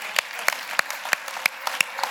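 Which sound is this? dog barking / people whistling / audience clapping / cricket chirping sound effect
audience clapping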